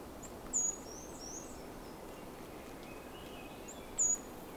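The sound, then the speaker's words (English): Thin, high-pitched notes of a black-and-white warbler: two short, sharp squeaky bursts about three seconds apart, with fainter wispy chirps in between, over a steady low background hiss. “It's also a black and white warbler here, too.”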